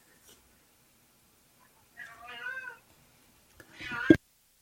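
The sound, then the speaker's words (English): A hungry female cat meows twice, each a drawn-out, wavering cry; the second comes after a short pause and rises louder before cutting off abruptly, with nothing else going on. “I can hear Whiskey. She's starving to death.”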